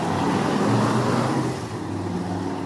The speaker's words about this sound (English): That was a very noisy motorbike.